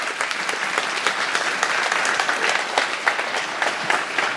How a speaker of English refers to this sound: Hey, will you give them a big round of applause?